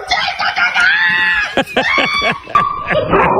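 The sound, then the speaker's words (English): A dog barks and yips excitedly at a raccoon in a Christmas tree, a rapid, high-pitched, loud burst with strained whining tones mixed in and what may be a person shouting alongside. “And she let her dog out. She scared the raccoon away, pulled the whole Christmas tree down.”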